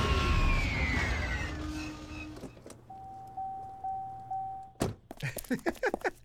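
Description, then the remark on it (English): An old car's warning chime dings steadily, about four evenly spaced mid-pitched tones, following a solid door thunk and some rumbling noise, then another heavy thunk and clattering. “The cars don't even have that dinging anymore, or is that like an old school? Was that the dinging?”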